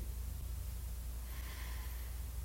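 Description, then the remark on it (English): A slow, quiet breath drawn in through the nose as part of a simple three-breath practice for calming anger, soft and airy, with no talking, over a steady low background hum. “In that anger, in that rage, in that desire to shout to the world, stop. And breathe in.”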